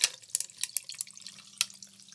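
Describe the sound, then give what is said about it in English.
Jameson whiskey is poured into a glass until it is full, a quiet run of splashy, gurgling bursts over a faint low hum, with no one talking. “Yeah, this nigga done poured a whole full ass. You gotta dry. You gotta dry when we get out of here. He poured that shit like it was soda, nigga.”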